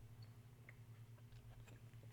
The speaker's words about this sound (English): That was a sip break, guys.